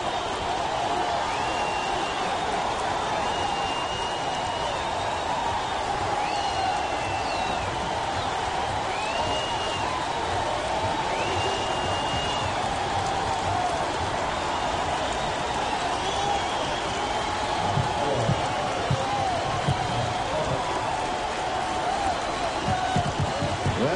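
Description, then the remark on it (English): A large stadium crowd at Fenway stands, roaring and cheering continuously as Roger Clemens sets the major league record of 20 strikeouts in a game. A dense steady wall of noise with high whistles rising above it swells slightly toward the end. “Let them yell.”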